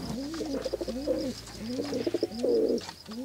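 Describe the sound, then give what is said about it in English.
Pigeons coo in a steady, repeating pattern of soft, throaty rolling calls, fairly clear, with a faint low hum in the background and no talking. “two birds landed on the sill and began pecking away at the Oreos. Ed and Phyllis are pigeons.”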